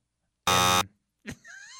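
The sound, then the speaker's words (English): A loud, harsh buzzer blares once for about a third of a second, thick with stacked harmonics. A short pause follows, then a voice begins to speak. “You know, you just buzzed my wife's name.”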